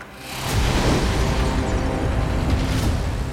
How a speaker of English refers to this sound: It sets off a massive explosion.